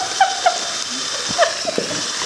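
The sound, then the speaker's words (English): A power drill whisks butter with a steady, high whirring hum, broken by a few sharp clicks and short squeaky chirps as the whisk knocks about the bowl. No one speaks. “Who needs to buy expensive kitchen aids if you've got a power drill around?”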